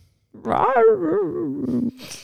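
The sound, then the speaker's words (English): A person vocally imitates a dog, making one drawn-out, wavering bark-like sound for about a second and a half, followed by a short breathy exhale. “Yeah, if you ever hear that bark, it's probably that you're...”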